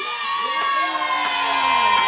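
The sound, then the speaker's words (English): A crowd cheers and shouts yeah loudly and continuously, many voices blending into a sustained roar, with a few sharp bursts punctuating it. “Now clap your hands and say yeah.”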